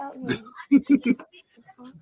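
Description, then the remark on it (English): A dog that has gotten out whimpers in three quick, high whiny bursts, with a short rustle just before and faint scattered noises afterward. “All right, well, the dog's out.”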